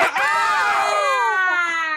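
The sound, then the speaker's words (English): A man lets out a loud, sustained screech, imitating the cry of a phoenix. The shrill, wavering call rises and then slowly falls over about two seconds, alone. “So, prepare your Phoenix calls, gentlemen.”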